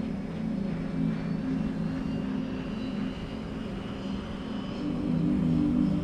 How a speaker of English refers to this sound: As the plane gracefully took off into the air, she gazed out the window and watched as the ground below faded away amidst the misty white clouds. The gentle whirring of the plane engine comforted her and rocked her gently